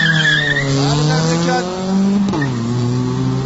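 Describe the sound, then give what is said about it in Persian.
Car tires skid with a loud, sustained squeal, their pitch sliding up and down over a revving engine for several seconds, with no talking, during street car racing at 2 a.m. on Andarzgoo Street while the neighbours sleep. “اینا میان 15 میلیون شرط میبندن سر ماشین بازی”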